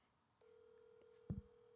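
A phone call ringing out, waiting for an answer: a steady electronic ringback tone starts and holds evenly, with a brief low thump breaking in near the end.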